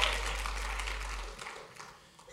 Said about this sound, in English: Give the Lord another great hand clap and you can be seated.